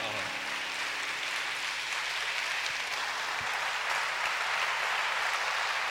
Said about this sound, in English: Clap your hands to encourage him.